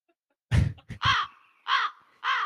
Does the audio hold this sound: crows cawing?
yes